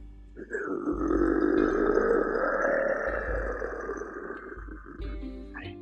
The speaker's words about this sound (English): Then he cupped his hands to his mouth and gave an animal cord toward the forest. In response, something powerful gave a deep growl.